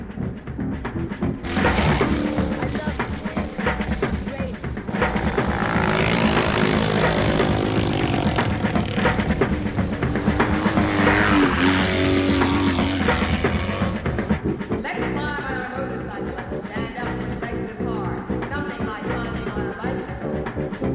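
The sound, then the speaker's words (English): A loud motorcycle engine runs steadily for about twenty seconds, its pitch rising and falling as it revs, with a brief dip partway through and no voices. “A motorcycle has two wheels and handlebars to steer it. It's fun to drive, and when you drive, everyone can hear it.”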